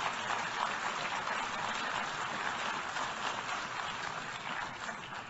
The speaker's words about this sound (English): Wow, sustained applause for the Prime Minister of Israel and the General Assembly.